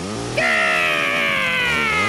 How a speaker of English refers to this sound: There's only so much crazy yelling and chainsawing your neighbors are prepared to listen to before they start assuming you're a crazy yelling chainsaw guy!